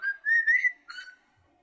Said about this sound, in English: What whistle? I don't know what it is. I'm scared. Where is it at?